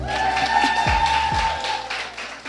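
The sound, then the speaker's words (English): An audience claps for Jesus before a sermon, a dense, fairly loud wash of hands for a couple of seconds, with sustained keyboard-like tones and low thumps sounding underneath. “Would you clap for Jesus this time?”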